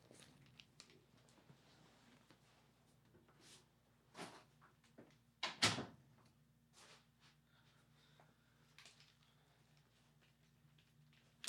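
household object, door being shut

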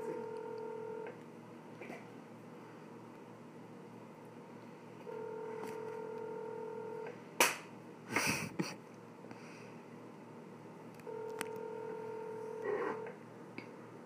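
signal or alarm, phone dialing a number

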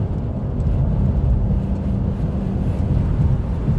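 vehicle, car driving in traffic

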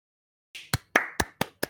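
crowd, small group clapping hands

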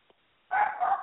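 animal, dog barking

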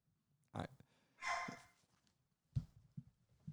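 animal, dog barking

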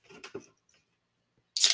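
food or drink, beer being opened

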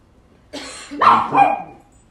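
animal, dog barking

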